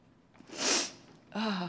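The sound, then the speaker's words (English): A single sharp sneeze bursts out with a hissing rush of breath, followed a moment later by a short voiced sound, otherwise quiet. “Bless you.”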